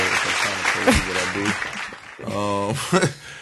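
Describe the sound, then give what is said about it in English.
A few seconds of steady, dense clapping from a group, with voices calling out and talking loudly over the applause throughout. “I love giving myself to kids. Applause.”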